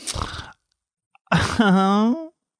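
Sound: voice imitating a snore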